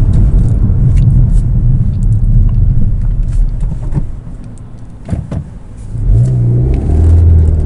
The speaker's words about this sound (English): But it's meant that doing the clutch has been really good fun, and it goes up and down the gears so nicely. And in fact, you want to go up and down the gears because it's so much fun to rev between each gear.